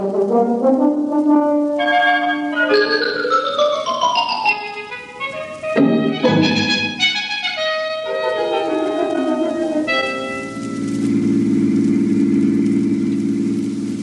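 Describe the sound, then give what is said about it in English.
A car engine hums steadily and rises and falls in pitch as it accelerates through gears, fairly loud, then settles into a lower, steady drone near the end. No one speaks. “Come on, my car's outside. I'll drive you home and let you see how it's done.”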